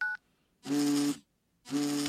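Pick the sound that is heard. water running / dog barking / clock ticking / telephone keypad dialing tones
telephone keypad dialing tones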